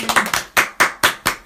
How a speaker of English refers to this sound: Clap it up one time.